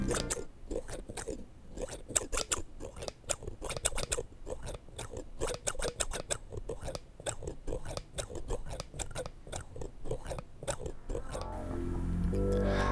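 Scissors snip hair during a haircut in quick, irregular bursts of crisp clicks, continuing steadily over a low background murmur before a deeper rumble rises at the end.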